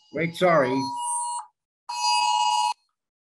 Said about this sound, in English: Do you believe it? Somebody is missing. That was my cell phone. Somebody in Coronado is missing.